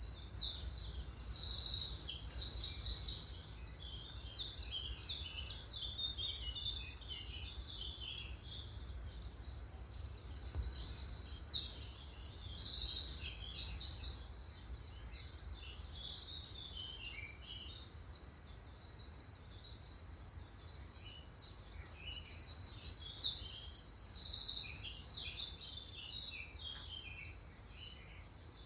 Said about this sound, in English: I love just the intense sounds of those birds. There definitely were chiff-chaffs, definitely were definitely wrens, but there was also a black cap, sort of fluting notes in the background, which were sort of just rising and falling,